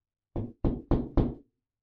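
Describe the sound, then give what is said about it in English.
Four firm knocks on a neighbor's apartment door across the landing, in an even, quick rhythm, fairly loud, each with a short wooden thud and brief decay, followed by silence. “Grabbing its collar, you haul it out of your home and across the landing to your neighbor's door. You knock.”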